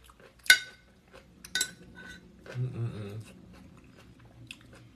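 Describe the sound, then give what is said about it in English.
Someone eats leftover salad with cutlery: two sharp metallic clinks of utensils against a dish, followed by quiet chewing and a brief low murmur, then faint scraping. No talking. “eating Leftovers Live”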